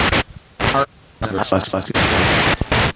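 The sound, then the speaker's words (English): Bursts of hissing radio static chop on and off, with a faint, echoey voice fragment surfacing through the noise in the middle before the hiss returns, loud. “This feels more and more like just a radio signal.”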